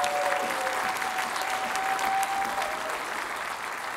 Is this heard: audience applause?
yes